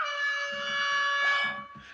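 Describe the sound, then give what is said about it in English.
A loud, steady air horn blares continuously for about two seconds, a single unbroken brassy blast with a faint low rumble beneath it. “It's given me the air horn.”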